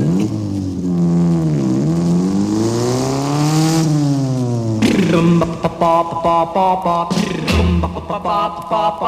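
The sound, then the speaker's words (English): A motorcycle engine revs up and down in long sweeping pitches, then breaks into a rapid series of choppy throttle blips, loud with no talking. “I'm cool, going yeah, yeah, yeah, a motorcycle.”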